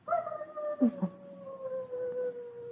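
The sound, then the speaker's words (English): Foxes barking on a ridge above a valley during mating season: a long, drawn-out, howling cry that slowly sinks in pitch, with a couple of short yelps partway through. No one speaks. “The foxes are barking up on the ridge.”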